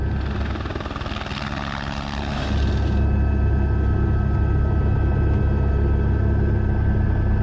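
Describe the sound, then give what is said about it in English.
An Airbus H125 helicopter's rotor chops steadily over a loud low engine rumble, the sound shifting partway through as it passes by, then settling into a sustained heavy drone. “The best helicopter in the world for filming is this guy here. It's an Airbus H125.”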